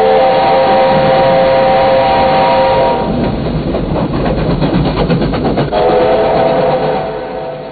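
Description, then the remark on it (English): An Australian 38 class steam locomotive, the 3801, roars past, its whistle sounding a long steady tone at the start, breaking into rapid chuffing in the middle, then sounding again before fading slightly. “Roaring into the night, and singly capable of pulling the longest express train, proud product of Australian engineers and artisans.”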